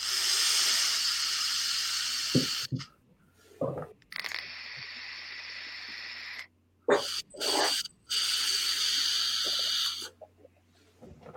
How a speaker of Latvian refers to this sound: Tad, no, protams, ar šo te aparātiņu, kurā es iepriekš šito ķiršu sūbīju testējis, Tādā es paņemšu vēl pāris tvaikas pavilkšu.